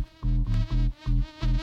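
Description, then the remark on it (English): A loud buzzing like a bee in an original music record, pulsing in five or six rhythmic bursts with brief dips between, its harmonic drone stacked densely with a rasping edge and no voices present. “Get a bee!”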